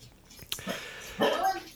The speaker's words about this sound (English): Oh, we got a dog in the background. Nice. Yeah, there's two of them. Sorry. Downside of not having a studio.